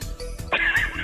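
A horse neighs once in a short, loud, shrill whinny with a wavering pitch. A low rumble sits underneath, and no one speaks.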